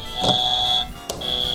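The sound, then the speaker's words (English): Two quiz buzzers, tested by the players before a health and Evergreen Park history quiz, sound one after the other. Each is a loud, steady high-pitched electronic tone opened by a sharp click, with a brief gap between them and no talking. “And so you have buzzers in front of you. Everybody test your buzzer real quick.”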